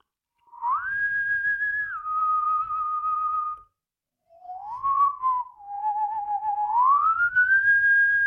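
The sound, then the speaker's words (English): A person whistles a slow, wavering tune late at night, in two phrases separated by a short pause, the pitch gliding up and down between sustained notes, clear with no talking. “Stop whistling and go to sleep.”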